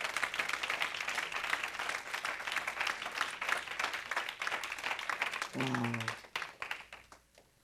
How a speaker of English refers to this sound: Can we give God another hand clap of praise? Amen.